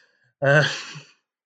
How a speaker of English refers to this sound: Are you quite well? You did sneeze. Are you quite well?